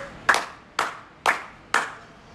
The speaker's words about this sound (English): Hey, like I get on my show, I gave y'all a hand clap. You know what? I'm gonna give you 4 this week.